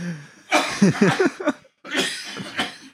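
Loud coughing in two rough fits separated by a short pause, each burst harsh and breathy with strained, throaty vocal sounds mixed in.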